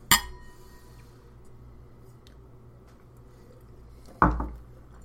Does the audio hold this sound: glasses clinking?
yes